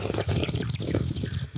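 A wet, bubbly slurp of hot coffee drawn in over about a second and a half, with gurgling, liquid texture and a short sharp finish.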